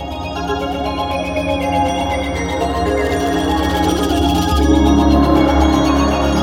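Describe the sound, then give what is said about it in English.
A dense, steady musical passage swells as a deep gong strikes partway through, its low resonant boom ringing out while fuller percussion comes back in beneath it. No one speaks. “That spot is right when I get the chills, right as the gong hits and all the percussion fades back in.”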